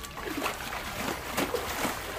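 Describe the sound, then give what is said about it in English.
Water splashes repeatedly in quick, irregular bursts as a man and a woman slap and churn the surface of a pool, drenching themselves and getting water all around them, with bright sloshing spray throughout. “She begins to splash too.”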